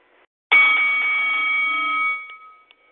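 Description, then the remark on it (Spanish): A loud, bright bell rings once to start the round, holding a steady metallic tone for about a second and a half before quickly fading away, with no one talking. “Okay, ya tú sabes, el señor de la campana, para adelante.”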